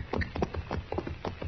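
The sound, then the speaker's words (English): Horses' hooves clip-clop along at a steady walking pace as the horses are led to a barn, a series of distinct knocks repeating several times in quick succession with no talking. “Chester, put our horses in the barn. Get them out of sight, huh?”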